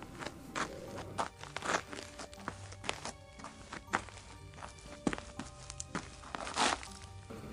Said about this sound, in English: Alejandro's feet are dragging on the floor on the cobblestone streets as he drunkenly trots back to his house.